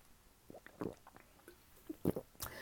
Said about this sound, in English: I had to take a sip